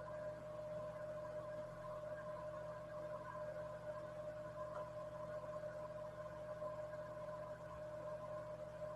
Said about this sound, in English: Now Jamie's out of the bus station, driving the pickup truck again.